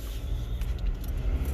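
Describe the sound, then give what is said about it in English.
Steady low engine and road rumble fills the cabin of a moving car, a constant muffled drone with faint higher hiss and no voices. “You are in the car”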